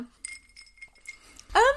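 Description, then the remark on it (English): Ice clinks lightly a few times in a large cocktail glass pretty full of ice with a cocktail over it, with a thin ringing tone between taps, and a person starts speaking at the very end. “You had a large glass and it was pretty full of ice with this cocktail over it.”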